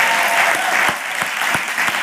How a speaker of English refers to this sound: The Bible tells us that the overseers who lead effectively are worthy of double honor. So I think we should give him a double hand clap, right?